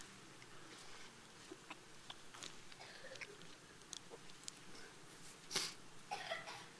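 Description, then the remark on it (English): Someone takes a quiet sip of a drink: soft mouth clicks, a light slurp and a swallow scattered over several seconds, with no talking. “While you're flipping, I'm going to take a sip.”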